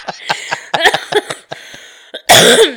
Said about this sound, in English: Now you got the cough back.